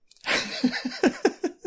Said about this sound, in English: Went to clear my throat.